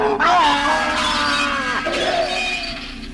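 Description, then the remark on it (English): A sudden, loud crash of polished glass shattering, followed by bright, ringing shards and tinkling debris that sustain for a few seconds before slowly fading. “I stretched out my fingers to the abomination, to touch a cold and unyielding surface of polished glass. But it would yield.”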